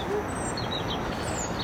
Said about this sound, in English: It's accompanied by an audio soundscape consisting of birdsong and atmospheric ambient sounds.